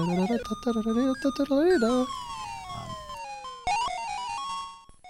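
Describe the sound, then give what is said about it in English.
The American Patrol March, a 19th-century U.S. march, rendered as bright, synthesized music in a platformer video game where a character climbs ladders through a maze: wavering electronic tones with vibrato, a long downward-swooping note, then a run of crisp stepped notes, fairly loud throughout. “And it opens up with a bit of Beethoven, and then it's constantly playing this 19th century U.S. march, the American Patrol March.”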